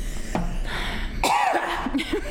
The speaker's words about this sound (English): Now she's coughing.